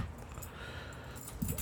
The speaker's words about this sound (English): I just shifted around a pair of keys. That's what the noise in the background was, in case you need that Foley sound for a pair of keys getting moved around. I got it right here.